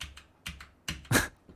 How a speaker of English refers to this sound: It's a mechanical keyboard, which is a lot like any other keyboard, except it's a lot more clicky, like this.